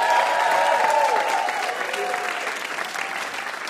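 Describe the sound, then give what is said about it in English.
Sustained applause from an audience for the VIP Adam Rapoport, a dense wash of clapping that stays loud and steady for a few seconds before easing slightly, with faint crowd murmur mixed in. “And how about a huge round of applause for our VIP, Adam Rapoport.”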